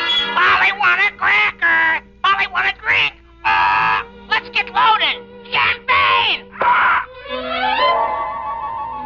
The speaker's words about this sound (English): Ladies and gentlemen, you have just met Caesar the Parrot, a sort of feathered candidate for Alcoholics Anonymous. Yes, Caesar really loves his champagne, but he isn't getting much of it these days.